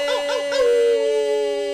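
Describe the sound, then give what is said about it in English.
A person imitates a coyote howl: a single sustained, wavering falsetto cry that warbles briefly, then settles into a steady, fairly loud tone, with no other talking. “It's kind of like This Week in Gaggery, but with me pretending to be a coyote, which you know, I gotta say, thank you.”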